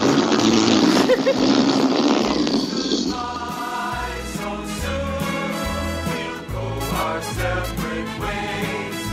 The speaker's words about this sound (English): let's get that balloon deflated. We need more speed.